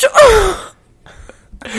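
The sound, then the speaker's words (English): A voice imitates a sneeze the speaker had during a video call with the camera on but sound off: a single loud, breathy burst whose pitch slides downward, followed by a short lull and some faint voiced murmurs. “Thank God, because I sneezed like this.”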